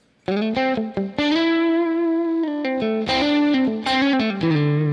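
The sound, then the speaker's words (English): A clean electric guitar on its middle pickup position plays a melodic lead line with reverb, a few quick picked notes opening into a long sustained note, then more phrases ringing out with no talking. “So now, I've got that reverb on. I'm in this middle position right here.”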